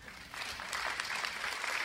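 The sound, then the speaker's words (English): An audience claps steadily, a dense, bright patter of many hands at an even, sustained level with no speech over it. “All of you who are clapping, I suggest you do some more thinking.”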